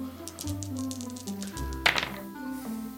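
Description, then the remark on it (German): Three dice, rolled for perception and empathy, clatter across a table in a quick flurry of small clicks and taps, ending in a sharper knock, while soft background music plays underneath. “Du würfelst auf Wahrnehmung und Empathie.”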